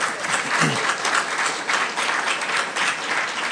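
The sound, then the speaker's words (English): A banquet audience applauding steadily as a singer is welcomed up, a dense, continuous patter of many hands clapping at once, fairly loud and sustained throughout, with a brief murmur of voices mixed in. “I don't know if you can eat with one hand and clap with the other, but coming up so.”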